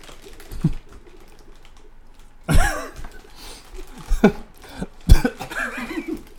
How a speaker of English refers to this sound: currently crunching on one of the crunchiest snacks of all time. The little brown things and Chex Mix.